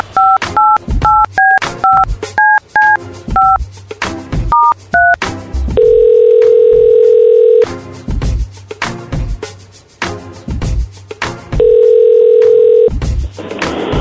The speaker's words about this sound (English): I want to make a phone call real quick.